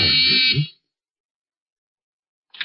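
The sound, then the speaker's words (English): A harsh electric doorbell buzz at apartment 1C sounds steadily for about half a second, then stops; after a silent pause, a brief second burst of buzzing follows. “Well, we'll ask him if he answers that doorbell.”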